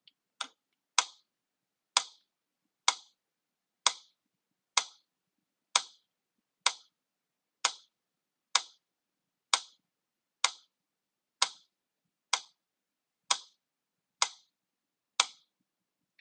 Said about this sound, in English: So let's get our metronome ready. And to make things simple, I'll set the metronome at 60 BPM. Again, it means a beat is exactly 1 second long.